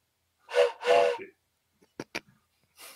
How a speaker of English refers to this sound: Oh, give us a nice little train noise.